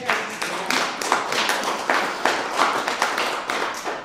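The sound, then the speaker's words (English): A small crowd of barely 15 people at an Alberta Party event in the Livingstone-McLeod riding claps steadily for about four seconds, a dense patter of sharp hand claps at an even, moderately loud level with no voices over it. “But this is a supportive crowd.”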